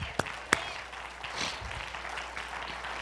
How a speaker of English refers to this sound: Amen. We all ought to clap on that one.